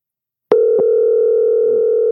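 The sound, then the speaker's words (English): A click, then a loud, steady phone tone hums continuously through the rest of the short clip, like an outgoing call starting to ring. A second faint click comes just after it begins. “I'm going to call Steve now and see if he picks up”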